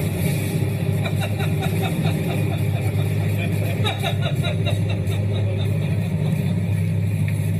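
airplane engine in flight

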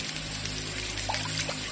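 running water

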